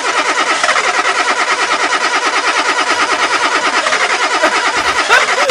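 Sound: car engine cranking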